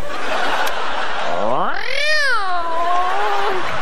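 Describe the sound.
A person's voice imitates a long, drawn-out cat meow, rising then slowly falling in pitch, heard clear over a faint background hum.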